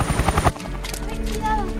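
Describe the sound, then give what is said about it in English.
A helicopter's rotor thumps in rapid, regular beats, loud, then settles into a steady low engine drone. “this is Chopper 3. Prepare for extraction.”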